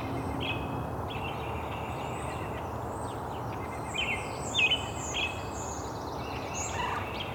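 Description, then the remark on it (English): A mix of backyard birds calling and singing, including an American robin, a brown-headed cowbird, a pine warbler, a white-breasted nuthatch and a European starling, with overlapping chirps and whistled phrases over a steady, rushing outdoor background noise. “American robin, and a brown-headed cowbird, pine warbler, white-breast nuthatch, European starling.”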